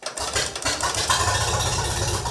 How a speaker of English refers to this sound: So this is an International Harvester 1938 FarmAll F20.